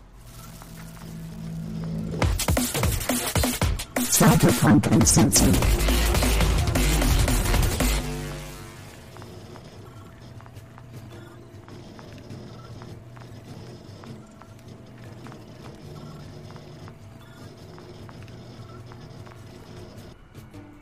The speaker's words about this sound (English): See if I can get Sirenscape going without being too obnoxious. Like I said, it was crashing yesterday on me. Get some city sounds going.